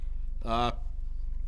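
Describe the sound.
A single short, voiced burp from someone who has had a couple of beers, fairly loud, lasting a fraction of a second over a steady low background hum.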